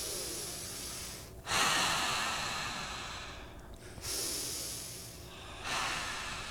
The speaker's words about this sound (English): Breathing.